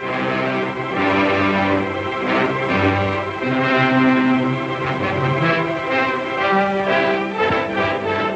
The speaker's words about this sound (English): And Fox Film also had its own fanfare.